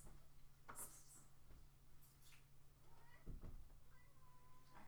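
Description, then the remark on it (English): A cat meows a few times, short tonal cries with a steady low hum and some faint clattering in the background. “Cats may be the opiate of the internet, but they are the bane of recorders.”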